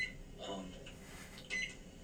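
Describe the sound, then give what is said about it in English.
Short, high electronic beeps from microwave keypad buttons being pressed to microwave popcorn, one at the start and a quick cluster near the end, against a low room hum. “She's hitting so many buttons. I know. What are you microwaving?”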